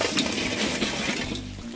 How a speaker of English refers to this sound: I like the chimney starter, works really well. This is ready, I'm gonna pour this into the grill.